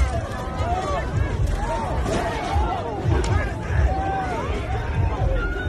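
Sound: crowd screaming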